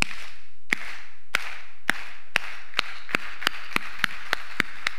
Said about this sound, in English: Something we do in the plug, we don't just clap regularly. We clap like this.